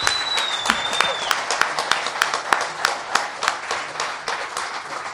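An audience applauds in a steady round of many hands clapping, with a few sharper individual claps standing out; a faint whistle rises briefly near the start.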